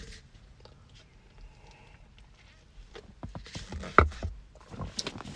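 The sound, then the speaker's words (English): A near-silent pause, then a quick sip from a drink: a few soft wet slurping and swallowing sounds, a sharp little click, and a brief rustle at the end. “I'll take a quick sip.”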